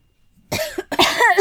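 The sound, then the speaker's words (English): A loud fit of harsh coughing in two quick bursts after a brief silence, rough and throaty, with no one speaking. “Need to cough up all the douchebag.”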